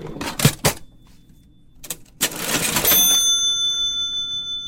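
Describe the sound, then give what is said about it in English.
An old cash register, thought to be a 1944 model, in a store clatters through a few sharp mechanical clunks, then its bell strikes once with a bright, high ring that sustains and slowly fades. No one speaks. “It's got a good bell, doesn't it?”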